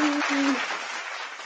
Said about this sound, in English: Let's give him a hand clap on that.